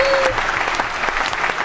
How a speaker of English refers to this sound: let me give a clap to that.